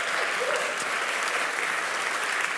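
A church audience applauds steadily after the announcement of its new worship pastor, a dense, even wash of clapping hands that holds at a constant level for a few seconds without pause or voices.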